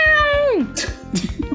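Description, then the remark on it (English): A person does a loud meow imitation, a single drawn-out call that slides down in pitch, followed by brief chatter and laughter-like bursts. “…'s not very stealthy, and we have a cat person.”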